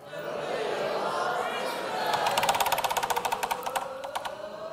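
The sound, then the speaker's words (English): A spinning prize wheel ticks rapidly, its sharp clicks gradually slowing and spacing out as it winds down, over a low murmur of voices from a group of people. “Okay, are we ready to spin?”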